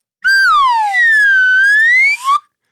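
A slide whistle swoops downward, then glides slowly back up in one loud, continuous pitch bend before a short final upward chirp, played alone.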